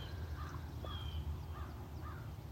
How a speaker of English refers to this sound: Greetings from the life, the shore. Okichigami, the big lake, Lake Superior. Greetings from the dancing sunlight. Greetings from the birds, the breeze,